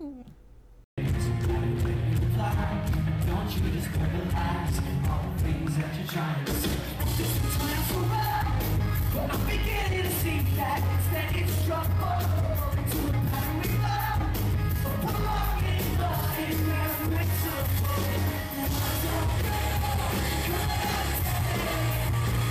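A live rock song plays loud and dense from start to finish, with driving guitars, pounding drums and shouted vocals, after a brief quiet moment at the very beginning.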